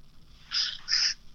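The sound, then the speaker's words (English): A cooking timer goes off while someone is cooking, with two short, shrill electronic beeps in quick succession, each lasting about a third of a second, with no talking over them. “Sorry, that's a timer.”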